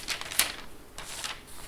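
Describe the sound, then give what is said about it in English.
Thin paper rustles and crinkles as pages of a paper Bible are turned to Colossians 3, a few crisp flicks and brushing sweeps, fairly soft, with no talking. “I'm using a paper version. That's why you can hear that.”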